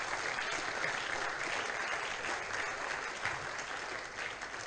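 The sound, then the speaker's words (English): A crowd claps steadily for several seconds for the musicians who have just performed, a dense, even wash of many hands clapping at once with no voices standing out. “Can we give a hand of applause to them?”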